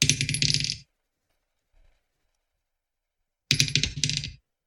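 Dice clatter and spin around a glass bowl with a square opening, used as a dice tray, in two bright rattling bursts separated by a few seconds of near silence, with one faint low thump in the gap.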